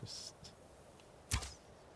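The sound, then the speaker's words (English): A video game arrow is loosed from a bow: a soft airy swish and a faint second whoosh, then a louder, sharp thwack with a low thump, clear, with no talking. “I don't have that many arrows, so wasting them, shooting them miles away is probably not the best idea.”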